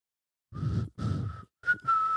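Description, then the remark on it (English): Someone whistles the Avengers theme tune in four breathy bursts, the first two longer and the last rising into a clearer held note, with no talking. “I was going to whistle the Avengers theme.”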